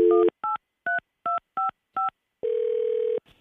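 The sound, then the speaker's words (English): A phone keypad beeps through a quick run of dialing tones as a prank call is placed on the K92 Morning Thang radio show, about seven short evenly spaced beeps, followed by a longer steady tone before it cuts off. “So I'm going to call as Helen's adult son, Jeffrey, who she doesn't really have, by the way, which is good because Jeffrey is awful.”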